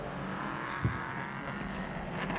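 Prototype race cars roar past at speed in a dense, steady wash of engine noise, with a brief low thump partway through and no voices.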